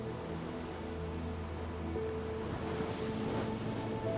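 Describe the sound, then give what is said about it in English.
Ocean waves surge in a steady, continuous wash, with a low engine-like drone underneath and gusty wind noise. Fairly loud and constant throughout, with no voices. “Imagine the wind, the waves, the rain, the darkness.”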